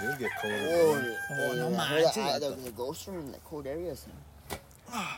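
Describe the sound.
A rooster crows loudly near the start, a long strained call, followed by people talking over a low background hum.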